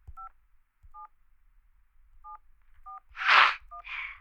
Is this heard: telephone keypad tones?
yes